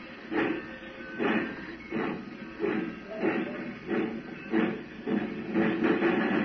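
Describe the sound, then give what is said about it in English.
A railway engine chugs along steadily, its rhythmic puffs repeating about every second under a constant hiss, moderately loud, with no voices. “Now when that engine turns back, move fast. Head for that platform.”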